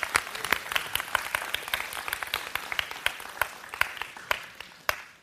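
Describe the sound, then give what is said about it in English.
An audience in church applauds the performers, many hands clapping in a dense, steady patter that holds for about five seconds before tapering off, with no voices over it. “So I'm going to give them a hand.”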